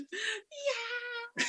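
Cats meow excitedly, three quick drawn-out calls in a row with rising and falling pitch, fairly loud and with no talking over them.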